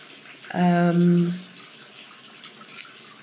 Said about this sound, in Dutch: Even wat warm water er aan het badje toevoegen.